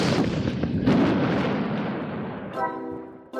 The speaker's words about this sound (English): we'll cause an avalanche with a giant cannon